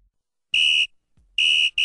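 Sharp, high-pitched whistle blasts: three loud, steady shrill tones with short gaps between them, the last one cut off at the end. No talking.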